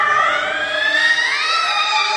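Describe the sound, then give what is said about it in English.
Improvised Inuit throat singing by a woman: a loud, continuous voice holding a dense, buzzing tone rich in overtones, its pitch slowly rising and bending with no pause or breath and no speech over it. “If this is not what you were expecting Inuit throat singing to look or sound like, stick with us here.”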